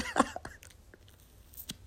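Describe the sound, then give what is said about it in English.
A short slurping sip of a drink of Tito's vodka with orange juice, followed by a few soft mouth and swallowing clicks, then quiet background with one faint clink near the end. “So we're sipping on this.”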